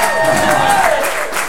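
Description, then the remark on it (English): A crowd applauds in a steady, dense wash of clapping with some cheering mixed in, fairly loud and continuous for the whole moment, with a faint whistle-like tone riding on top. “No applause for that?”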